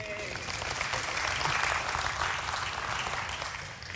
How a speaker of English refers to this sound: Go ahead, I'll let you clap. Yay.